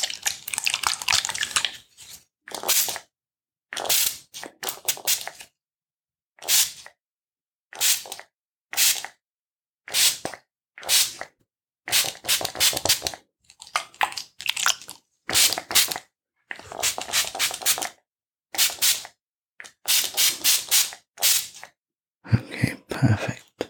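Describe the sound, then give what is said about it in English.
A spray bottle squirts water onto shoulders in short, hissy bursts, about twenty of them in an uneven rhythm with brief silent gaps between. The sprays are fairly soft, and no one speaks. “So I'm going to start spraying the shoulders now.”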